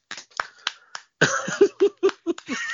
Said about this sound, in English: Oh, that, you guys didn't have to clap for me. Oh, thanks, man. That's so nice. You already have a clapping ovation for the first episode?